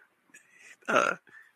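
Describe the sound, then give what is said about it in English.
A cushion being squeezed: soft rustling, then one loud squeaky, burp-like rush of air lasting a fraction of a second, followed by a faint short puff. “I'm squeezing a cushion.”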